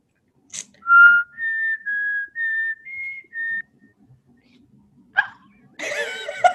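Someone whistles a short bar of a TV theme tune, six clear sustained notes in a steady rhythm, followed by a brief pause, a sharp click and a burst of noisy rustling or laughter.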